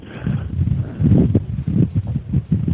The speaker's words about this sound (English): Sounds like there's a windy day over there. Is that wind? No, it's my fan. Oh, fan. Okay. Well, that's a form of wind, isn't it?